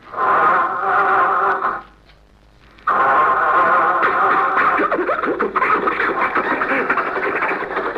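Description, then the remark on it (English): A cold old car engine sputtering to start, imitated by a voice: a loud, buzzy drone cuts out briefly, then chugs back in with rough, uneven sputters and rattles. “Say, Rochester, the motor sounds better, doesn't it?”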